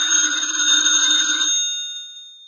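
A telephone bell rings in a single sustained burst, bright and metallic, then stops and its tone fades out. Nobody speaks.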